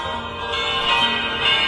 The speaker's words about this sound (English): Oh, ringing the bell. It takes me back,